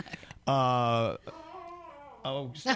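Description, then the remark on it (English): A small dog, Ollie, whines loudly in a few drawn-out, pitched bursts, with a lower throaty grumble in between, all without any talking. “Even your dogs don't want to talk politics.”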